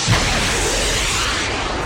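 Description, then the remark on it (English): A loud, sustained rushing whoosh of nitrous oxide boosters being turned on, a dense roar that holds steady for about two seconds and tapers slightly at the end, with no voices. “Now to turn on the nitrous oxide boosters.”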